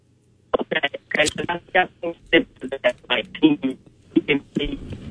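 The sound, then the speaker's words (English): A voice comes through a thin, narrowband cell phone line, chopping into short fragments with abrupt gaps as the call breaks up and cuts in and out. “Yeah, we're losing you there on the cell phone breakup”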